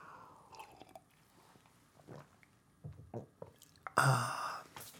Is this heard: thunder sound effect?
no